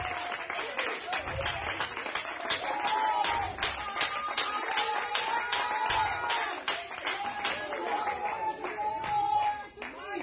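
A church audience claps their hands unto the Lord in a steady, rapid rhythm for the whole stretch, with voices singing and calling out over the clapping and a low thump recurring every couple of seconds.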